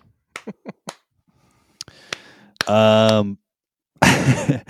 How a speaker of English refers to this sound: Six claps. That's all he gets.